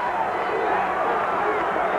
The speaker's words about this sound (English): Listen to that thunderous ovation. That's Woo! What it's all about, folks. You bet your life. Oh. Beefcake covering his ears. The luscious one, he's covering his ears, too. They don't like all this applause for the champion, Hulk Hogan.